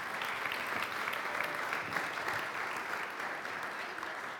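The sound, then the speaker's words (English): Steady audience applause for the guards after a telling of how Nehemiah built the wall, a dense, even patter of many hands clapping at a constant moderate loudness with no voices breaking through. “Give the guards a big clap.”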